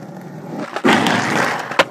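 A skateboard grinding along a rail or ledge, a sustained gritty scraping roar that starts abruptly after a brief rolling rumble and ends with a sharp clack, with no voices.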